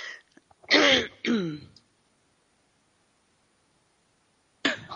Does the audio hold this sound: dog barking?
no